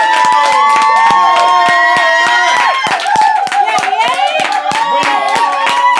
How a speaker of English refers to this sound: Can we have a round of applause for our guests